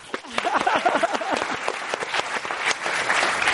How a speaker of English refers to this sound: Okay, we'll try it out. We'll try it out. Okay, so imagine a very loud, raucous clap.